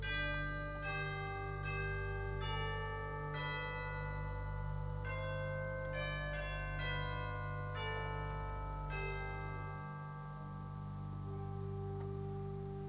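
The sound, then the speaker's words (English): Bells built into a pipe organ chime one note at a time in a slow melody over a steady, sustained organ drone, full, with no voices. “Now, it's not common for an organ to have bells in it.”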